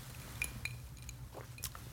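Two bright, ringing clinks of glasses holding old-fashioned cocktails, touching in a toast at Jiggers' Place, about a quarter second apart. A few softer taps and rattles follow over a low, steady hum.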